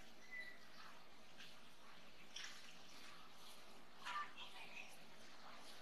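A faint, soft trickle of water poured into a glass of whisky, heard against quiet background hiss, with a couple of brief liquid splashes.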